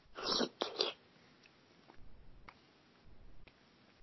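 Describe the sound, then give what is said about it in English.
A few short, breathy wet slurps of food close to the microphone, hissy and loud at the start, then quieter mouth clicks and soft smacking sounds with no talking. “Here, I can do it close to the mic, so I can do a little slurp, even though it's not really slurpy.”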